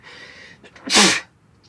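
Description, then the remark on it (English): A single explosive sneeze bursts out after a brief breathy intake, loud and sharp for a split second before fading into quiet. “Sorry. Bless you.”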